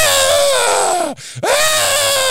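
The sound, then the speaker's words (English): A man loudly imitates the scream of wrestler Pete Doherty from a match in which Junkyard Dog grabbed him by the hair: a strained, sustained yell that drops in pitch, breaks off briefly, then resumes with a rising, intense cry. “I always remember that match, Pete Doherty just screaming.”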